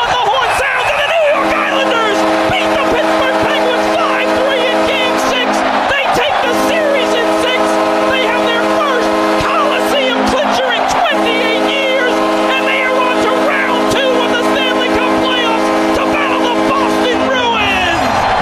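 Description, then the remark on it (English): A deafening hockey arena crowd at Game 6 of an Islanders playoff game roars without letup for the whole stretch, a dense, loud wash of cheering with steady droning tones running underneath and indistinct voices mixed in. “You hear the crowd just deafening there.”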